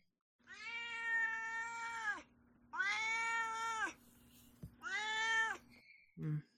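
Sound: cat meowing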